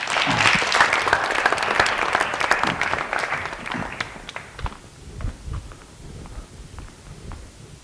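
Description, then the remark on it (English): An audience claps steadily as a hypnotist is welcomed to give a talk: a dense burst of applause for about four seconds that then thins out into scattered, fading claps and a few stray thumps. “And can I just get another round of applause for my shoes, please?”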